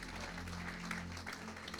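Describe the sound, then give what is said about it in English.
An audience at a church service claps together as a hand clap of praise to the Lord, in a dense, steady wash of hand claps, with low sustained organ-like tones underneath and no clear voices. “Why don't you just give the Lord a hand clap of praise?”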